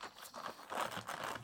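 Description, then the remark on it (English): Quiet crinkling of a sealed plastic bag, with a few irregular rustling bursts as the wrapping is handled and pulled open to unbag an item made by Dice Man Creations. “I'm afraid to unbag it now. It's like it's sealed.”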